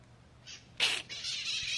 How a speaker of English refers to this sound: The fucking parrots are laughing at her.